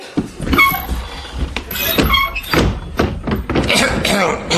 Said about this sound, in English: That door, you need a bit of WD-40 on that.